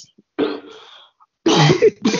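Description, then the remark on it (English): A person coughs close up in three rough bursts: one raspy hack that trails off, then after a short pause two harsher coughs in quick succession. “So you're coughing. You just coughing anyhow.”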